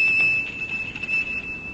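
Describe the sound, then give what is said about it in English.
A thin, high-pitched bell at the ancient gate of a monastery, rung by pulling its bell cord, rings steadily for a couple of seconds, its sustained tone hovering over a faint low rumble with no voices present. “Then I rode the mule down the hill to the monastery and by its ancient gate pulled on the bell cord.”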